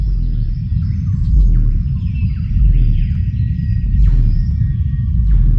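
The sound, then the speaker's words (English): A cassowary's deep, rumbling boom, the lowest-pitched bird call and barely audible to the human ear, throbs steadily through the whole stretch, felt more than heard, while faint chirps and whistles of other birds flicker high above it. “It's the lowest pitched bird call in the world, and it's barely audible to the human ear.”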